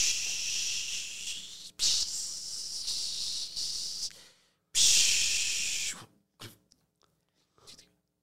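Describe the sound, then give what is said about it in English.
A voice imitates a T-bone steak of bull meat sizzling on a barbecue, with three long, bright hissing bursts, the last cut off sharply, followed by a few faint short hisses and quiet mouth noises. “Sizzle.”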